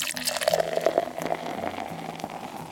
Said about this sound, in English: You slice some peaches up and throw them in there and you got yourself a nice sangria. Now, let's take a little taste. Pour a little bit in the chalice I made out of one of my intern's skulls.